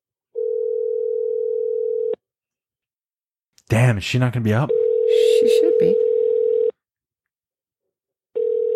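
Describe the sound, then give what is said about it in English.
A phone's ringing tone for an impromptu call repeats as steady, low-pitched buzzing pulses about two seconds long with short silent gaps; a person speaks briefly over the second ring. The call goes unanswered. “Are we going to impromptu call”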